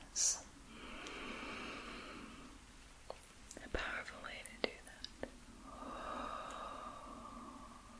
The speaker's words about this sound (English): Sorry that I'm taking like really deep breaths. Trying to stay relaxed as well. Breathing.